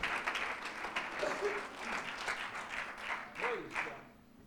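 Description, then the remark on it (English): An audience at an evening church service breaks into sustained hand clapping of thanksgiving to the Lord, a dense, steady wash of applause from many people, with a few voices calling out over it before it fades. “As you're seated tonight, would you give the Lord another hand clap of thanksgiving one more time?”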